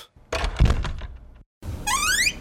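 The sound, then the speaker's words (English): A heavy door opens with a solid thunk and a clattering rattle, then after a brief pause a high, rising creaky squeal follows as it swings. No voices. “Okay, we'll try some doors.”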